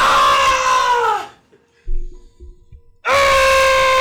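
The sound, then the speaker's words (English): A person imitates a pained scream, as if gritting their teeth in pain, with two loud, strained, harmonic cries. The first slides downward in pitch before fading, a brief low murmur follows, then a second sustained cry bursts in. “Do a scream.”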